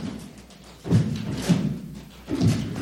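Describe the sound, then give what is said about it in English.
Three heavy, low thumps like feet stomping on the ground land at a loose, uneven rhythm over a steady low rumble, each one booming. “He kept on thumping to his heartbeat, stomping the ground and shaking the planet.”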